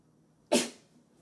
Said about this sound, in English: I'm going to sneeze